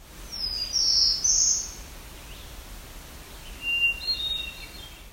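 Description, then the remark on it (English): Black-throated blue warbler and hermit thrush singing: two short bursts of thin, high-pitched birdsong, one early and one later, over a steady outdoor hiss with no voices. “This was a black-throated blue warbler and a hermit thrush.”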